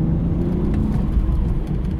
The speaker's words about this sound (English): So we're driving along in this internal combustion-powered car, but if I put my foot down hard, virtually nothing happens in terms of the response of the engine. It's quite a slow response.